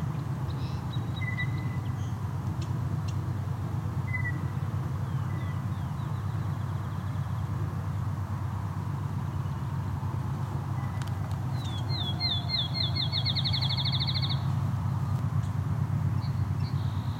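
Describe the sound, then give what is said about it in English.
A loud field sparrow song: a run of clear whistled notes that speeds up into a rapid trill, heard once over a steady low outdoor rumble, with a few faint chip calls earlier. “Field sparrow, very loud.”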